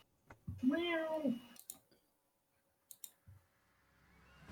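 A single drawn-out cat meow rises and falls in pitch, fairly loud, followed by a few sharp clicks and soft knocks with no talking.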